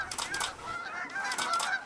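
A dense chorus of birds honking, overlapping nasal calls rising and falling in steady waves, with no pauses or voices.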